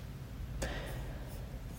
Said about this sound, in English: Sometimes I like to talk to you guys while I'm typing on notes on my computer for you.